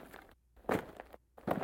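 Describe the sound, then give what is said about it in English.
Three crunching footsteps on gravel at an unhurried, even pace, heading towards a tent, each a gritty, scraping burst with short quiet gaps between, loud, with no voices. “The footsteps crunched loudly on gravel, heading straight towards my tent.”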